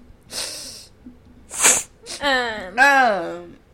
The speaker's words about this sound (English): As you rub your nose. I've been sneezing, and everyone knows it.